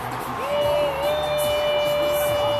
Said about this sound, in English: Okay, the crowd is clearly ahead of the feed of the baseball game on the TV. Yeah. The crowd's cheering.